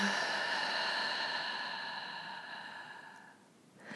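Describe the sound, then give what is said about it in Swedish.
A long, slow breath pushed out through the mouth after breathing in through the nose and filling the belly, as part of a breathing exercise: a steady airy whoosh lasting several seconds that gradually softens and fades. Fairly clear, with no talking. “Och släpper långsamt ut genom munnen.”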